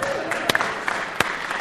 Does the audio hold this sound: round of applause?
yes